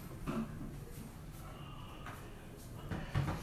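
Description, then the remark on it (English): A door is handled on a windy day, with a few thumps and knocks, and it swings shut with a louder bump near the end, over a steady windy rush. “Okay, can you close that door, please?”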